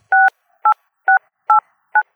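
Five touch-tone beeps from a phone keypad as a number is dialed, each a short dual-pitched tone separated by brief, slightly uneven pauses, with no talking.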